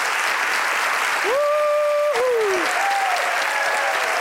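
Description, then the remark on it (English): Steady, loud studio audience applause lasting several seconds for two guests joining via satellite, praised for their heroism, with a long rising-and-falling whoop of a cheer riding over the clapping partway through. “So I think we need to give them both a round of applause.”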